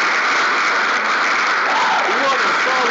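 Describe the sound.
A steady, dense wash of clapping fills all three seconds, like a round of applause sound effect, loud and even throughout, with a faint voice briefly audible underneath near the end.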